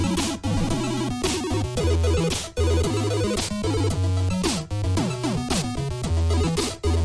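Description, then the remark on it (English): Loud, busy title theme music from the video game Puzzled plays without talk: a bouncing bass line under fast stepping synth melodies, punctuated by sharp percussive hits in a steady upbeat rhythm. “I've never heard of this game. I don't know anyone who has, but this title theme slaps.”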